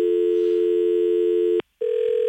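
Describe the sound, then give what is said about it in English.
A steady telephone line buzz tone on a call after the caller's line was lost, with a strong low-mid pitch and many harmonics, cutting out briefly for a short gap before resuming at a slightly different pitch. “Do you want to just hang up on her there or hang that line up? I'm getting the buzz”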